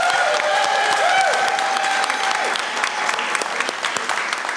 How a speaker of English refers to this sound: One more big round of applause for them.